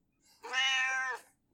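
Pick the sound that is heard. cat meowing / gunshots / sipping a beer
cat meowing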